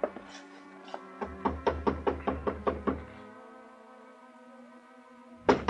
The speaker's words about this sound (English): I paid off the taxi, walked 3 blocks to Carla's apartment house, climbed the stairs, and knocked on her door.